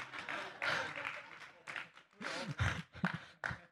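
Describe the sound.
Scattered hand claps ring out amid a busy wash of crowd noise and voices, with a few sharp, distinct claps standing out near the end.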